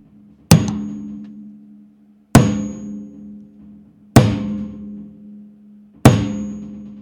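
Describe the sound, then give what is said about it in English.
A sledgehammer strikes the metal wing bolts that hold a door shut, tightening them, four times at a slow, steady pace. Each loud ringing clang decays into a low metallic hum before the next blow. No voices are heard. “The bolts, the wing bolts that hold the door shut, they have to be tightened by hammering with the sledge.”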